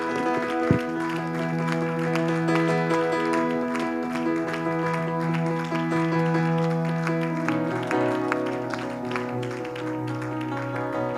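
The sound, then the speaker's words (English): An audience claps their hands to the Lord before being seated at a morning service, the sharp hand claps ringing over sustained organ or keyboard music that fills the room, with no one speaking. “And would you just clap your hands to the Lord before you're seated this morning?”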